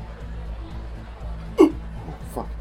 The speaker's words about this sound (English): I haven't had hiccups like this in years. No, you sound like you need a breather here. Looks like I drank too much earlier.